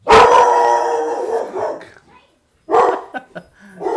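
A dog that has gotten loose in a house barks loudly, one long drawn-out bark followed by a short pause and then a quick cluster of sharper barks.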